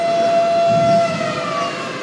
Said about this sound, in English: that alarm that goes off at noontime every day happens when? Every day at noon, and why? It's just a test of the alarm system, just to make sure that it's working.